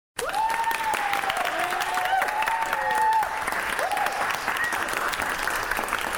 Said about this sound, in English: An impressive amount of clapping. I love that.